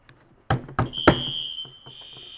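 Three sharp knocks are followed by a piercing, high-pitched electronic alarm that sounds steadily and continuously, close and fairly loud, with no one talking.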